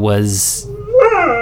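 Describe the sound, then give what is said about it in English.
A dog named Sadie lets out a brief, rising howl, fairly loud, after a short hiss and a low humming tone at the start. “Apologies, my dog Sadie is singing the song of her people in the background.”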